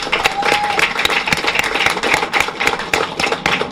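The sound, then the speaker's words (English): A crowd claps steadily for several seconds, with dense, irregular hand claps merging into a continuous wash of applause at moderate loudness and no voices over it. “So I really want to applaud them for all their efforts.”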